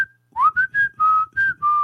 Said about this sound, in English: Can you do the whistle? Only. Can I or can he? I can't whistle with my nose. No, but can you just make the whistle tune?